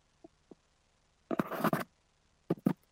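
A small fishing lure rattle, rigged on the hook between the hook point and the front of the hook, is shaken, producing a quick cluster of dry clicks and scratchy rattling like a crawfish click, then two short shakes. Faint taps come before, with no talking.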